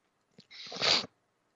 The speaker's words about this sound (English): Excuse me, I've got some bad sneezes today.